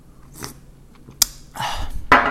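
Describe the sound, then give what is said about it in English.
Someone takes a quiet sip of tea, with a soft airy slurp and a few sharp little clicks, like a cup being set down. No one speaks. “If you hear me taking a sip of tea throughout this podcast, that's why.”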